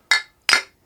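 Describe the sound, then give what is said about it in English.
Glasses of Kronenbourg 1664 beer clink together twice in a toast among friends drinking at home, two bright ringing taps about half a second apart, clear with a short shimmering decay and no voices. “I hope that you all enjoyed that dinging.”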